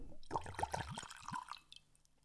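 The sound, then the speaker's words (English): German whiskey glugs and splashes as it is poured into glasses at the same time, a quick burst of bubbly gurgling that trails off into faint drips after about a second and a half. “That was stereo pouring.”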